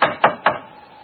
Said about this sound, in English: Well, here's the door, but I can't see any sign of a bell. They seem a trifle short of modern conveniences. Let's try the knocker.